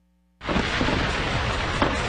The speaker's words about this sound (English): Fireworks, drones, and a light show. There's no other place in the country that does that.